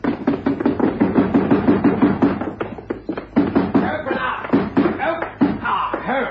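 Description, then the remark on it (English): Heavy, rapid pounding on a locked door that will not open, a run of loud thuds that keeps going in uneven bursts, with a voice sounding over the banging. “I can't get the blasted door open.”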